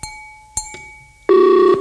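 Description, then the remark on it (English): Telephone dialing: a few sharp, isolated clicks, then a loud, steady electronic tone with a buzzy harmonic edge that holds for about half a second. No one speaks. “Excuse me for one moment. Hold on. I have a call to make.”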